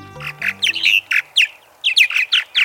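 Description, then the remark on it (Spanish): A purple martin, the largest swallow in the United States and Canada, chatters in a quick series of rich, gurgling chirps and creaky warbles, about a dozen notes in bursts with short pauses, clear with no talking. “Esta dulce voz pertenece a la golondrina azulnegra, la golondrina más grande de Estados Unidos y Canadá.”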